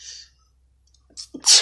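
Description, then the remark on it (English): A single loud sneeze bursts out at the end, preceded by a sharp intake of breath and a brief hiss at the start, with quiet room tone between. “Ooh, sneezing all over.”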